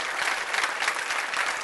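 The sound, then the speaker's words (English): An audience claps together in a steady, dense patter of many hands, moderately loud and sustained throughout without a break, with no voices standing out. “I can't believe that's the best clapping y'all can do.”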